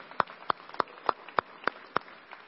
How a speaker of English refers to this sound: So let's hear it for the moms one more time. Let's all give them a clap for the moms.